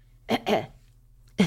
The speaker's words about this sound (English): I'm still recovering from the air quality in Northern California. I mean, literally still coughing up dirt.